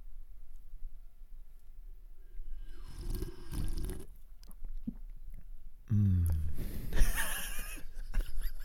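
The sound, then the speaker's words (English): Wet sips of beer followed by swallowing and a soft exhale, with smacking mouth noises coming in a few short bursts over a quiet background. No one speaks. “I'm just going to take a sip of my beer.”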